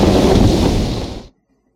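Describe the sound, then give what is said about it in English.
Loud, rushing wind and surging sea waves around a boat roar steadily for about a second, then taper slightly and cut off abruptly into complete silence. No voices are present. “The wind dies down. The boat slows its rocking. the sea becomes very, very still.”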